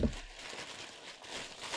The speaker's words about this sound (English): He's rustling about. He's handing me an object. It's wrapped in newspaper. Intriguing. Often you don't get stuff wrapped in newspaper in charity shops.